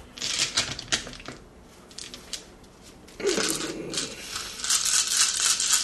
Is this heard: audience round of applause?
no